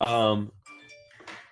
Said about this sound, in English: I just got notification for the goal.